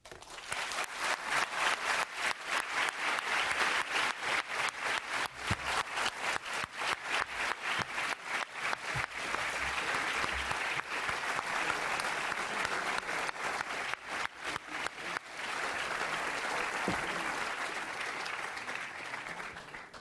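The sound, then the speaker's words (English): Sustained applause from a sizable audience after a lecture, dense rapid clapping that stays loud and steady without pausing, with no voices breaking through. “The applause just did.”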